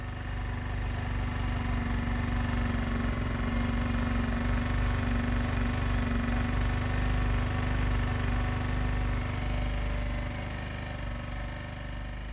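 A 1992 Yamaha XT 600 single-cylinder motorcycle engine idles steadily, a loud, continuous low thumping rumble with a rapid pulsing beat that holds for about twelve seconds, easing off slightly near the end.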